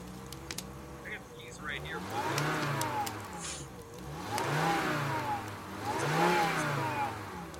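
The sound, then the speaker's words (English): A truck engine revs up and falls back three times in steady swells, its pitch climbing and dropping with each push of the throttle, with faint voices briefly at the start. “walks right out the front door, right into the truck, and starts it.”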